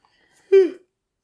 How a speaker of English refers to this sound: I just yawned